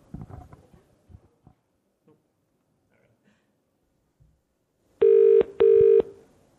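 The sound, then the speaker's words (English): Faint clicks and fumbling, like a number being dialed, give way to a loud telephone ring tone: two buzzy bursts of a double ring heard down the line, as a call is placed to a company selling homeopathic products. “So I phoned them up and asked them whether they would sell me one of their homeopathic products.”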